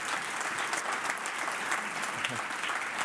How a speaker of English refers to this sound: God bless you, Sunday school teachers. Let's give a round of applause to all of our Sunday school teachers.